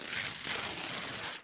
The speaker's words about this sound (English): And his flesh parts almost like parchment. It's paper thin. And because there is an existing scar there, it just goes.